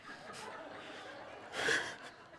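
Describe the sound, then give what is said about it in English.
Two exaggerated gasps, breathy sharp intakes of air, the second louder and longer than the first, with no words spoken. “Double gasp.”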